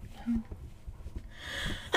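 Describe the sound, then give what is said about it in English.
A single sneeze with a breathy, hissing build-up ending in a sharp burst, with faint low murmuring in the background. “Bless you.”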